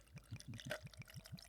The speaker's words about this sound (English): All right, he's pouring the bottle. Sounds pretty good. Sounds like he has ice, so we know he has money.